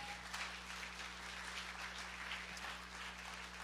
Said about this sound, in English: And so I just wanted to tell you that I'm very proud of you as a church. Yeah, give yourselves a big hand clap.